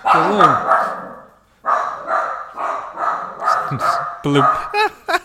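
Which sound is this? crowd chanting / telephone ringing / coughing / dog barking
dog barking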